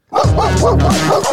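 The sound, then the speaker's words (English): A dog barks in a quick, continuous burst of several loud yapping woofs, with no one talking over it. “Did you look behind you like, is there dogs?”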